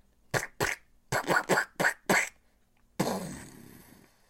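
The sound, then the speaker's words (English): A voice imitates one of a plane's engines sputtering and turning off as the plane runs out of fuel: seven quick, uneven raspy bursts, then a pause and a longer breathy hiss that slowly fades out. “Until they heard one of the engines go,”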